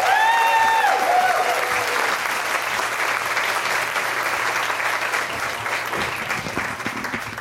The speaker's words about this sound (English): Let's give it up. Round of applause. Get it started.